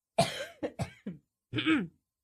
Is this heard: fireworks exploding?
no